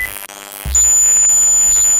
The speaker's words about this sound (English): Yeah, someone played Doom on sound waves. Here's what it sounds like for a few seconds.